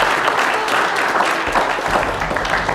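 A crowd applauds steadily, a dense patter of many hands clapping at once, loud and continuous throughout with no voices rising above it.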